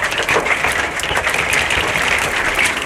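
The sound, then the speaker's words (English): Hail pelts down in a dense, constant clatter of countless tiny hits, loud and steady throughout, rattling like heavy applause with no voices. “Finishing on my podcast, can you hear the hail? That's hail.”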